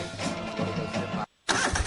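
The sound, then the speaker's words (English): A lawn mower engine cranks and catches, settling into a rough, steady mid-pitched rumble. It cuts out for a brief moment of silence, then roars back just as loud. “A proven machine to reduce your mowing time? Count me in. A new Exmark mower costs a whole lot less right now”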